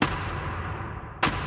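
Two sharp, hollow knocks of wood striking wood, so-called tree knocking of the kind attributed to Bigfoot, about a second apart, each one loud and booming with a long, ringing low tail that lingers between the hits. No voices.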